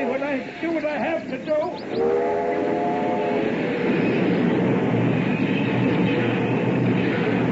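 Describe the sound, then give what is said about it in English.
A freight train rumbles past on the tracks, loud, with a brief whistle-like horn tone early on before the steady roar of the cars carries through to the end. “stop the train.”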